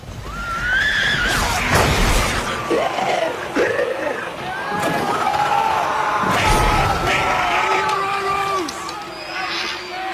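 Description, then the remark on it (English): A clip from a TV battle scene: loud, chaotic screaming layered with garbled, inhuman zombie shrieks and wails, many voices overlapping continuously in a dense, frantic din with no clear speech. “Yeah, a screaming clip there. Sorry, I forgot about the clip. Yes, there's just garbled zombie sounds.”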